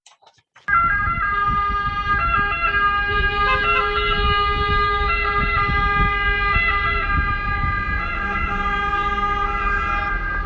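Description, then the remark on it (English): Busy city traffic in Rome, Italy, heard while riding an e-scooter through it: loud, with car horns tooting in overlapping stabs and a wailing siren running through it, engines rumbling underneath the whole time. “I've just ridden across Rome on an e-scooter through Italian traffic.”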